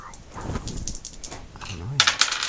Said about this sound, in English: I roll two dice to determine the level of damage you take. You cannot roll against it to defend yourself.